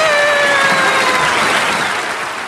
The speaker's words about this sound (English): But before we go, let us have one last round of applause for our very special guest star, ladies and gentlemen, Mr. Dudley Moore!